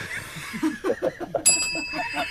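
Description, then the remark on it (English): A small hand bell gives one bright, ringing strike about halfway through, its clear tone hanging on to the end while people keep talking and chuckling underneath. “Little subtle ring of the podcast naming bell there for you”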